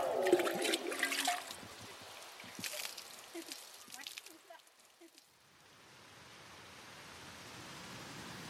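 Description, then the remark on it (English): Outdoor fountain water on the Capitol grounds in the evening splashes and gushes in uneven bursts at first, then settles into a steady, softer rushing spray. “I thought it'd be a fitting way to wrap up this day with a little evening stroll around some of the fountains here on the Capitol grounds.”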